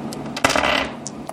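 Dice strike a hard table with a sharp clack, then rattle and skitter briefly before settling with a couple of faint ticks. The sound is fairly loud, with no talking.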